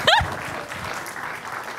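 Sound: audience applause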